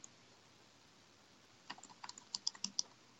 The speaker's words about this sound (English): I'm sitting still. I just I was tapping. I was on the keyboard.